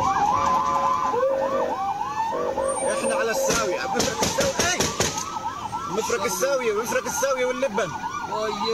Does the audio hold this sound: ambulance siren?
yes